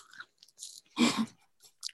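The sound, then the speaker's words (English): Crunchy chewing of a Little Debra's oatmeal pie snack cake, with a few short bursts of crackly bites and one louder, broader crunch in the middle, heard alone without any talking. “Do you hear that crunching? I do. It's Little Debra's oatmeal pie.”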